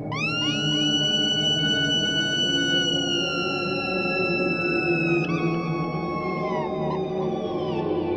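Eerie electric guitar cries made by plugging the guitar in backwards to a wah-wah pedal, long gliding harmonic tones that swoop up and sustain like whale calls over a steady low wash of wind noises.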